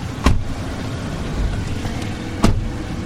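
A pickup truck drives steadily on a tour of an old neighborhood now owned by the Murphy Oil Refinery, with a low engine rumble and road noise, interrupted by two sharp thumps or clunks, like the cab jolting over bumps, heard from inside.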